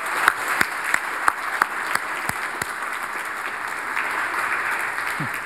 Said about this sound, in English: So just, can we again just say, let's celebrate our confirmants for just a second with another round of applause.